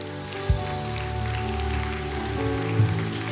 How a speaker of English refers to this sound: Tell you, come on, let's give them a hand clap as they come.